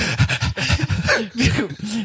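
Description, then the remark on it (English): Heavy, rapid breathing, a quick series of loud voiced pants and gasps that run together for a couple of seconds without pause. “I hear the heavy breathing.”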